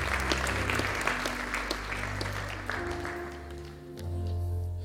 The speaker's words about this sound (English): Would you just give the Lord a hand clap of praise as you praise Him for His wonderful works to the children of men.